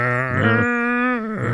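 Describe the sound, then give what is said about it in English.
A person imitates a cow's moo: one long, loud, droning voiced call that starts low, jumps to a higher pitch partway through, then drops back down at the end. “I believe that you're a walking upright cow.”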